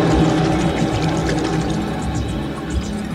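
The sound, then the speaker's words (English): A loud geyser of water bursts through a roof, gushing and roaring continuously, a dense churning rush that holds steady throughout with no voices. “They grabbed onto the rope and hoisted themselves up hand over hand, just as a geyser of water exploded through the roof.”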